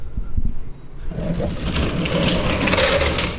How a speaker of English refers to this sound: As you can hear them. Those are the hummingbirds. To me, there's some beautiful birds.